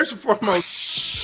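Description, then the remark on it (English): A brief spoken bit, then a voice imitates Jägermeister being poured into a skillet and sizzling: a steady, bright, airy hiss held for most of a second at fairly even loudness. “He start pouring Jager into a skillet.”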